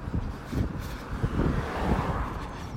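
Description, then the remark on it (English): A car rumbles past on a road, its low engine and tyre noise mixed with steady wind buffeting the microphone outdoors. “Here comes another car. And another one.”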